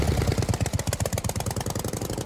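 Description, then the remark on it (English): A motorbike engine runs steadily, its rapid, regular pulsing throb loud and continuous with no voices over it. “Everyone grab a helmet and hop on your motorbike, including you, listener.”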